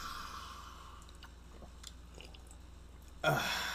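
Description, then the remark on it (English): A breathy sniff gives way to faint mouth clicks and small wet sounds, then a sudden louder slurp as someone sips hot coffee. “Sniff and sip, everyone. Sniff and sip.”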